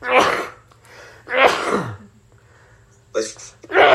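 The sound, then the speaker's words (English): Several loud sneezes burst out in quick succession, each a sharp explosive blast with brief quiet gaps between them, ending on another forceful sneeze. “Bless you.”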